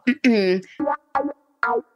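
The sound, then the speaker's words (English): The horn of a big truck carrying a helicopter honks five times in an uneven pattern: a short blast, a long wavering one, then three short honks. The tone is brassy, buzzy and loud, with no other sound between blasts. “It's honking at someone.”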